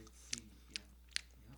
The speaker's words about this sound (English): The worst part about this whole podcast thing, it picks up every little munching you're doing.